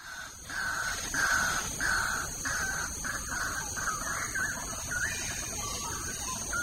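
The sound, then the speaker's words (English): Morning forest ambience in Clementi Forest with birds calling: a run of harsh, evenly spaced caws over a constant high-pitched drone, likely insects, with no one speaking and no traffic. “So, I mean, we're here in the middle of Clementi Forest, and as you can hear, it's quite noisy.”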